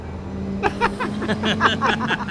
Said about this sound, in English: Right, with the trucks in the background.